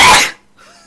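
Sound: sneeze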